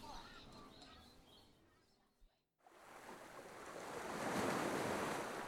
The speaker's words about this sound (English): Beachside in the winter. Cold and windy and wet, we are alone with the shoreline. The ocean gulps and whispers, and even the gulls are quiet.